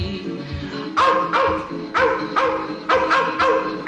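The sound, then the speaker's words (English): Dogs snarling, yapping and yelping in a loud, agitated chorus, sharp bursts coming every half second or so over a constant growling undertone, after running down a raccoon by a stream in Kentucky and waiting for a man with a shotgun. “They're waiting for the shotgun man to end it. And they're snarling, yapping, yelping's like a dream.”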